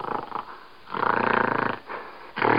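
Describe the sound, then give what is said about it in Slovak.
A gorilla huffs and snorts, a few loud breathy, rasping bursts with a longer rumbling grunt in the middle, with no talking. “To je takéto fúňanie gorily.”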